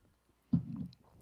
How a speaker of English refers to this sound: I accidentally just slurped my drink.